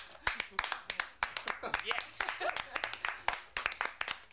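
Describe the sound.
A short round of applause from a few people: sharp, uneven claps rattle along steadily for about four seconds while someone cheers and voices carry on underneath.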